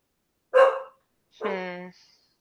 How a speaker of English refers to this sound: By the way, for those listening at home, that's our Sully alert. Sully loves to come in and bark every now and again.